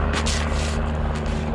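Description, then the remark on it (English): A small propeller airplane drones overhead, its steady low engine hum loud and continuous with a buzzing, pulsing quality and no voices. “Love the little airplanes that fly over.”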